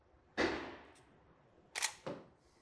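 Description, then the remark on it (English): A camera shutter fires: one bright mechanical click with a short hissing tail, then after a pause two more crisp snaps in quick succession. No voices. “And this one, it doesn't have that incredible clicking noise, but it does take a better photo.”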